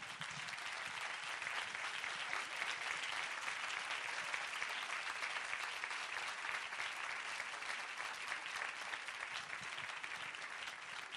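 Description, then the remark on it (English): Steady, sustained applause from an audience for the Bezos scholars from all over America as they stand up, a dense wash of many hands clapping at an even level for the whole stretch, with no voices standing out. “So I'd like to ask the Bezos scholars from all over America to stand up and take some applause, too.”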